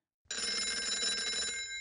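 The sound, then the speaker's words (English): A telephone rings as a call is placed to a guest: one loud, bright trilling ring that starts abruptly and holds steady for about a second and a half, with no voices. “And now we will get back to the show and call our first guest.”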